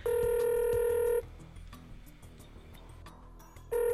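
Outgoing phone call to a motorcycle rider ringing: a steady, buzzy ringback tone sounds for about a second, pauses for a few seconds, then starts again at the end. No one speaks.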